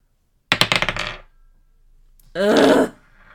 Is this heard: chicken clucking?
no